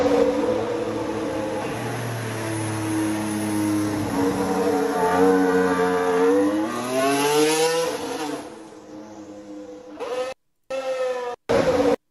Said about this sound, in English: I still have to get used to the sound of a McLaren engine, the Mercedes engine in the McLaren again.